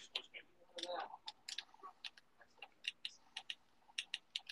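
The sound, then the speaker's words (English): Quick, crisp clicks of game controller buttons being pressed, coming in uneven bursts of a dozen or more taps, with a faint murmur of a voice near the start. “What you clicking on? Oh, they cheating, bro. Man, that's the controller.”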